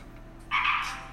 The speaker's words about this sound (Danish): Det er meget ihærdigt frø. Det er det super nuttet. Altså, jeg ved faktisk ikke... Jeg har aldrig hørt om en ladefrø før, det er spændende.